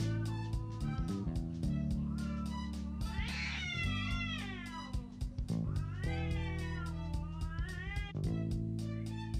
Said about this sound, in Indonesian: Dapat salam guys dari kucing tetangga yang lagi ribut di belakang rumah. Buat yang punya penyakit jantung, aku gak saranin ya di loudspeaker.